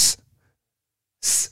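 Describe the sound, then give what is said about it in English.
Harsh, sharp sibilant S sounds in recorded speech with no de-essing stand alone: a brief hiss at the start, then after a pause a louder, longer one followed by a quick third, bright and piercing without softening. “You hear the difference, the crackle? That's what we're trying to get rid of.”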